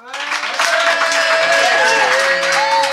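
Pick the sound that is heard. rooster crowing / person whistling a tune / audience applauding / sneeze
audience applauding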